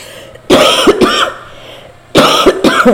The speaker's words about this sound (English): I am so sorry about this cough that has literally interrupted us from the beginning all the way to the end.